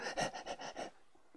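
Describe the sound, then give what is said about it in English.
A person imitates a dog panting, with about five quick, breathy huffs in a steady rhythm, moderately loud, then trailing off into quiet. “Now …'s doing dog imitations.”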